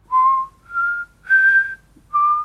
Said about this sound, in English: Can you whistle?